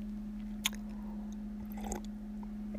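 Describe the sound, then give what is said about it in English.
Someone takes a quiet sip of coffee, with a sharp click early on and soft wet slurping and swallowing near the end, all over a steady low electrical hum. “Let me sip my coffee.”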